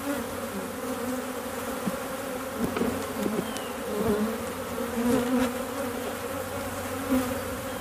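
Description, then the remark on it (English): A dense, steady hum of many honeybees buzzing together around an open hive, with a low droning band and occasional louder passes as individual bees fly by. No one speaks. “I'm probably going to get stung in my pants.”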